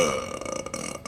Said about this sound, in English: Cord is an old, overweight Klingon, a once great warrior now past his prime. He doesn't rise to greet Caitlin. Instead, he takes a swig from a flagon and emits an earth-shaking belch.